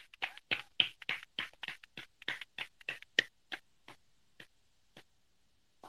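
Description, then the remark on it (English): Hands clap in a quick, steady run of sharp claps that slows after a few seconds, thinning to a few scattered, fading claps. No voices, and the whole burst is fairly quiet. “I was clapping.”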